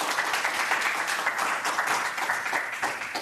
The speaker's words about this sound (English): Let's give a warm round of applause if you're here in person and online for our speakers.